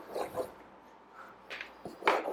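Scratchy pencil strokes on paper as someone draws Batman: a few short, uneven rasping bursts with pauses between, the last one the loudest, and no talking.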